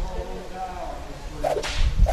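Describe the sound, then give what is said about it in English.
A whip crack sound effect rings out sharply, with a brief swishing rush of air leading into the snap and a second lash close behind, loud, with no talking. “The zip whip line.”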